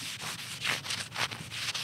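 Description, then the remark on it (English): Steady back-and-forth scrubbing of small, caked bird droppings off the top of a headstone at a gravesite in Eden Cemetery, Collingdale, using D2 solution; quick hissing, rasping strokes repeating roughly four times a second at a moderate level, with no voices. “The small, caked bird droppings on the top of the headstone have got to go.”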